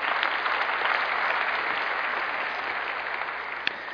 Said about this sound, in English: Yay, give yourselves a round of applause.